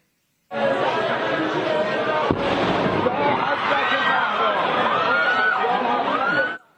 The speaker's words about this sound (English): According to Iranian authorities, two bomb blasts injured more than 200 people near the tomb of Soleimani.